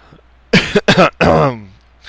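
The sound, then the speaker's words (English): Three harsh coughs burst out in quick succession, the last trailing into a rough, throaty clearing sound. Loud, with no talking. “But we should probably wrap this show up before I start coughing again.”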